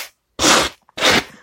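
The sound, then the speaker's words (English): Two loud, harsh brushing strokes as an office chair is cleaned of cat debris with a cat brush, each a short burst of broad, hissing scratchy noise separated by a brief pause, with no talking. “So I'm going to clean off this chair in my office. Hopefully that's not too loud.”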